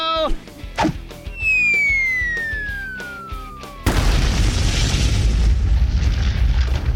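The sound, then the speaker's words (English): A descending whistle slides down in pitch for a few seconds, then a huge booming crash hits as Mighty Mila slams the monster Zogzilla into the ground like a hammer, shaking Pflugerville, followed by a loud, sustained rumble with no talking. “Mighty Mila just used Zogzilla like a hammer right into the ground.”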